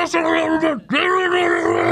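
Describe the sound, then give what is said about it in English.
A voice imitates a game controller speaker screeching during a game, with two loud, strained, buzzy screeches of wavering pitch, split by a brief pause. “And the controller was just screeching.”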